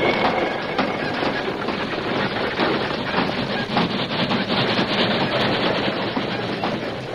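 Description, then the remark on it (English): A steam train roars past about 30 feet away, a loud, continuous rush of rumbling wheels and clattering carriages that stays intense throughout, with no voices. “Then, with the train about 30 feet away, the horses sprang through the opening of the tunnel.”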